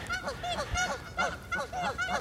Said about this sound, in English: And the Canadian geese say, let me see, translating.